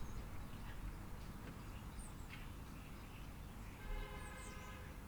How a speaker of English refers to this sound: You might have heard a car beep there as well